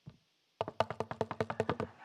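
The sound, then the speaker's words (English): A rapid, steady run of about fifteen knocks on a door, fairly loud, with no voices, after a brief faint thump and a short pause. “he learned to knock on the door.”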